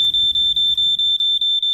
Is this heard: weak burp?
no